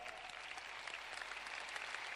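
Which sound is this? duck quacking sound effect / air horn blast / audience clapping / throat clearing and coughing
audience clapping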